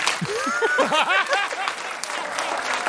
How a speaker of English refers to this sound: Let's take a poll. Clap your hands if you're like me and you think, even though you like people and you hang out with them, deep, deep, deep, deep down, you're like, people aren't really that safe.